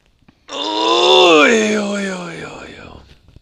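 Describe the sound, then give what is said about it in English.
A long, drawn-out human groan, loud and voiced, starting low and strained, then wavering and fluttering in pitch before trailing off after about two and a half seconds, as someone stretches. “It was just stretching, dude.”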